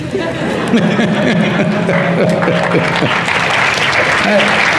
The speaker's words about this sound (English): Don't do this. You're clapping at my failures.